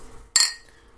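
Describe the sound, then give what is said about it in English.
Drinking glasses, including a Superman glass and a Dead Guy Ale glass, clink together once in a toast, a bright, sharp ring that fades quickly, with no talking. “That's a much better noise than last time when it was paper cups.”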